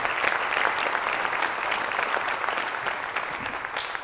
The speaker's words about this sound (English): Right, church? Let's have another round of applause for all the graduates, college, and the high school graduates.